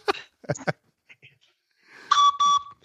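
A handheld train whistle gives two short, loud toots in quick succession, its breathy multi-tone chord ringing clearly after a few soft knocks and handling noises.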